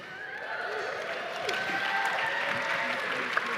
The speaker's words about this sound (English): Yeah, we notice it's not quite as good, the applause.